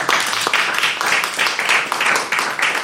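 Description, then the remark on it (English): A short round of applause from a small group for a player just given 5 points, steady clapping with a quick rhythmic pulse that carries on without pause and with no talking over it. “Give him 5 points and a round of applause, everybody.”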